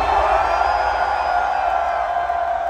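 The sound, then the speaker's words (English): A huge festival crowd with raised hands screams and cheers together on a count of three for a group photo, in one loud, sustained roar that holds steady for the whole moment, dense and continuous with no single voice standing out. “Raise your hands and scream.”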